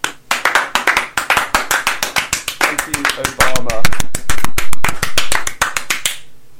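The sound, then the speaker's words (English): An audience claps briskly for about six seconds, sharp overlapping hand claps in a quick uneven rhythm, with a few voices calling out midway as the clapping swells, then it stops abruptly. “Well, should we get a hand anyway?”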